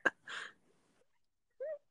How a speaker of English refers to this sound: What's that? You just fart. Nah, I keep on blowing against my lips.